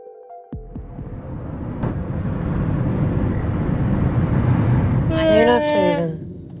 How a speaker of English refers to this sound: We're stuck in traffic, and it's just a huge jam.